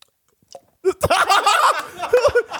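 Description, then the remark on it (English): After a brief quiet moment, someone chokes on a sip of energy drink that hit the uvula: a loud burst of sputtering, wet coughs and strained, gurgling throat sounds that run on for nearly two seconds. “I took a sip of some energy drink, hit me right in the uvula, almost choked on it.”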